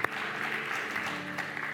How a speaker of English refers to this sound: Give God a clap of praise, church. Amen.